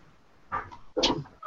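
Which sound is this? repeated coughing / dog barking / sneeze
dog barking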